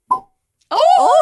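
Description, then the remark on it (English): A single short, sharp pop as a drink is opened, followed by a pause and then a sustained, harmonically rich vocal sound, like an exclamation or reaction. “Oh, that was a great and citrusy pop, I think.”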